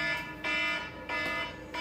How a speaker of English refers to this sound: Oh, sorry, I had an alarm. What the fuck you got an alarm for 8 o'clock for? I have no idea. That's weird. That's suspicious.